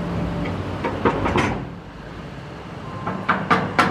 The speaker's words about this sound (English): opens the big metal doors from the surface of the parking lot.